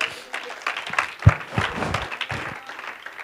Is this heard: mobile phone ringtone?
no